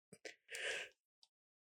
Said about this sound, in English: I'm yawning